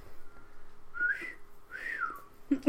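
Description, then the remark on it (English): Two soft whistled notes from a person, each gliding up and back down, fairly quiet, ending with a brief burst of noise. “No, I whistled!”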